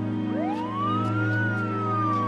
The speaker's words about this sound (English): Don't ever turn the siren on again.